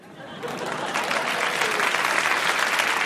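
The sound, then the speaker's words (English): Audience applause at an Intelligence Squared US debate swells quickly after David Carr's argument and holds steady, a dense, sustained wash of clapping from a large crowd, fairly loud and continuous throughout. “And the applause there tells you Carr had scored.”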